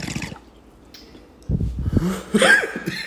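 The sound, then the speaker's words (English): A person coughs in a few rough, throaty bursts: a short one at the start, then a heavier cluster after a pause, with breathy, snorting edges. “You opening the show coughing shit.”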